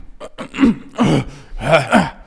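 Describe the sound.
A voice imitates two guys fighting on a plane with a string of strained grunts and heavy, effortful breaths, several bursts in quick succession, fairly loud with no actual words.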